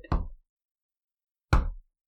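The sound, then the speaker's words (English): Two solid wooden thuds about a second and a half apart, like a door being shut and bumped, each one sharp with a short dull ring-out, and no one talking. “There's the door.”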